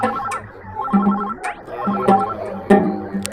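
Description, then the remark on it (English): A mobile phone rings with a bright electronic melody that repeats in short phrases, fairly loud, over a dim, busy background and with no one speaking. “His phone chirps.”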